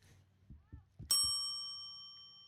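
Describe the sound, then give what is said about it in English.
A single bright bell ding, marking a pitch in a baseball game, rings out loudly and lingers with a long, shimmering decay, preceded by a few soft low thumps in the background. “So these bells, they're actually timed correctly, just in case you think these pitches are coming too fast.”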